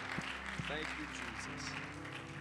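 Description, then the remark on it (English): A church audience claps steadily throughout as praise to God, a dense, sustained wash of applause with a few voices calling out beneath it. “Let's give God a hand clap of praise one more time.”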